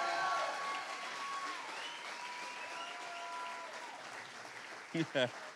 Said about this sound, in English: But come on, let's give her a big round of applause as she comes tonight.